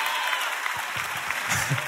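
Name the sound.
weak audience clapping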